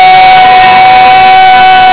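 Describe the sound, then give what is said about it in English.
An audience gives the Lord a shout of praise after a count of three, a loud, sustained roar of many voices with no distinct words, a steady high tone running through it for the full two seconds. “By the count of three, give the Lord a shout of praise.”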